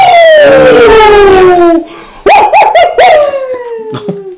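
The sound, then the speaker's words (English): A dog howls loudly in a long, drawn-out note that slides steadily downward, then breaks into a few shorter, wavering howls that rise and fall before fading, with no voices. “And we got a dog in here.”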